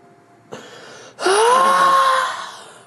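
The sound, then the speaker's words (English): A long, mournful wail rises after a brief breathy intake, holding a steady tone with a faint higher overtone before slowly trailing off into an echoing fade. “As you call it out, I have your echo. Mournful wail.”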